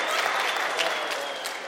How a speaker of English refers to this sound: Yeah, there you go. Clap for Rev. Randall. They have not one time clapped for me.